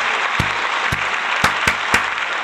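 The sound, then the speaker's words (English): Applause for Eddie Murphy on his induction into the NAACP Image Awards Hall of Fame: a steady wash of clapping, with a few sharper individual claps standing out at a roughly even pace, about two per second. No one speaks over it. “So let's give him a round of applause first.”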